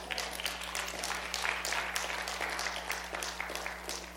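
Subdued, polite golf clap from an audience, a steady patter of many hands clapping for about four seconds without building or swelling. No voices are heard, only a faint low hum underneath.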